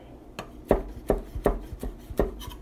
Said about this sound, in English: They're very tall, these garlic chives. That's why it's taking me so long to chop them. I'm still chopping the green parts. It's going.